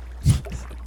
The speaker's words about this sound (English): A boat.